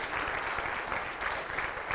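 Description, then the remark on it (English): A church audience claps together to give God praise during a sermon, a dense, sustained burst of applause, many hands overlapping into a steady, bright wash of sound with no single voice standing out. “Come on, clap your hands.”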